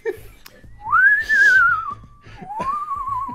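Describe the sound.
A person whistles two sustained, gliding notes, the first rising then slowly falling, the second rising and wavering, fairly loud and close, with a soft rhythmic background thumping underneath.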